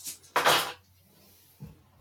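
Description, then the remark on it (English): A die clatters and spins briefly across a tabletop in a bright, rattling burst that quickly fades, followed a moment later by a soft low knock. No one speaks. “That dice spun.”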